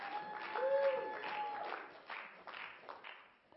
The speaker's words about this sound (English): We like to cheer as the kids go out to let them know that church is exciting.